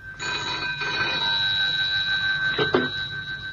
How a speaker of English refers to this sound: I couldn't sleep, and so answered at once when the phone rang by my bedside.